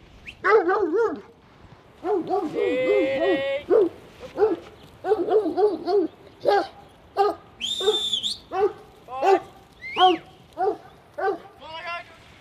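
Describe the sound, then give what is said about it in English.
Several working farm dogs in the back of a ute bark and whine excitedly in rapid bursts, with high-pitched yips and whimpers mixed between the barks, continuing steadily throughout. “Now, your dogs are raring to go. They're in the back of the ute right now, and one of them is staring at that small mob of sheep in the paddock.”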